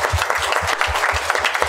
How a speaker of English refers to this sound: please join me in applauding Partially Examined Life